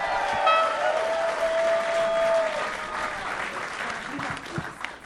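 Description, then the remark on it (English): A crowd claps steadily in a dense, continuous wash of applause, with a long high whistle or cheer ringing over it during the first few seconds. “Oh, he's starting a clap.”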